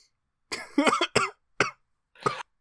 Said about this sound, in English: Sorry, I'm really trying not to laugh too much because when I do, I cough.